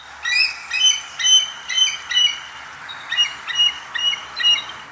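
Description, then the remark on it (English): A bald eagle gives a rapid series of high, thin, squeaky chattering calls, about ten short piping bursts in quick succession, clear with no talking. “And you're in luck because this week I'm talking about a bird found on the west coast, east coast, coast to coast, the majestic bald eagle.”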